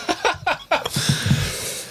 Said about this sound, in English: Is blowing his nose. Oh my God. And wiping his eyes with the same napkin.